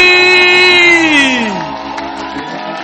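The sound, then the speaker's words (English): A church audience stands, claps and shouts loudly to welcome their pastor, led by one long, sustained voice that swoops downward before the crowd noise carries on underneath, with general clamor throughout. “I want you to clap your hands with shouts of Jesus joy.”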